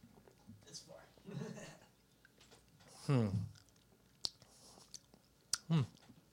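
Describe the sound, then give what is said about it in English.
Sipping of a limited edition beer: soft slurps and swallowing with wet mouth clicks, followed by a couple of short, satisfied voiced exhales, all quiet. “So let's go ahead and take a good old sip.”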